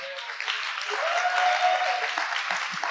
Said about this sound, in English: Come on up here. Give her a clap. I wanted her to share.